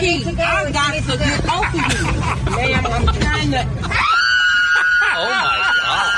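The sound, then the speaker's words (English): A woman passenger screams loudly and repeatedly aboard an airplane, sustained high-pitched shrieks over a crowded cabin's murmur of voices and low engine hum, the screaming growing shriller and more piercing toward the end. “Are you going to get off the aircraft or are you going to sit there and scream?”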